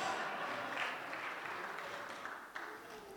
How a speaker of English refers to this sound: Can we clap for her real quick?